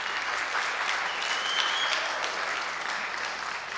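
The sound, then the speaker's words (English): A crowd claps loudly and steadily to show they like classical music, a dense wash of many hands that holds at an even level throughout, with no voices standing out. “Okay, first of all, I want you to clap if you like classical music. Clap loud.”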